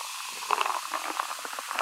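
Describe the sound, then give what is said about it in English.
A vodka soda being poured in a studio: a steady fizzy hiss with quick, irregular bubbly gurgles and splashes throughout, moderately quiet, no voices. “I can hear you pouring that, and it kind of makes me jealous.”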